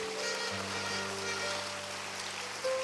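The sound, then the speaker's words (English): A crowd applauds for Jesus during a sermon, steadily, a dense wash of many hands clapping at once, with a low sustained keyboard tone humming underneath throughout. “Those who heard me, they are clapping for Jesus.”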